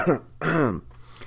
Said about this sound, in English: Day three. Started to get that little cough, right?